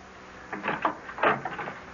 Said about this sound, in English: When Lord Carrig leaves, I am too impatient to wait for my answers. So I climb the great staircase to Clayna's bedroom and knock on the door.